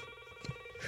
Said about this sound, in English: That phone rings anyway.